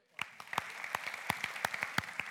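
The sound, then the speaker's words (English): A church audience (Gateway) gives a round of applause for God, with sharp hand claps rising out of a steady wash of clapping that starts abruptly and keeps going at an even level. No one speaks. “Okay, honestly, I'd like to give God a round of applause.”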